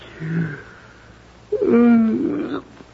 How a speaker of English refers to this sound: It's funny, I don't know why I'm yawning. Nerves, I guess.